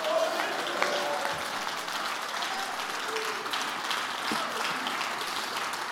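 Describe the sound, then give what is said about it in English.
An audience claps and shouts together, a dense, steady wash of applause mixed with scattered cheering voices that holds at an even, fairly loud level throughout. “Why don't you jump to your feet, clap your hands, and shout, the Lord is good.”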